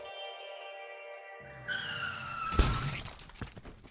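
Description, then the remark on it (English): A car's tires screech in a long, loud skid that builds and then ends in a sharp crunching impact, followed by scattered rattling debris. No one speaks. “She regained control of the car and came to a complete stop.”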